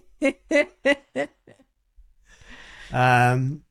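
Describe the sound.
A person yawns nearby: a drawn-out breathy intake swelling into a brief, loud voiced groan at the end, after a few short rhythmic vocal bursts.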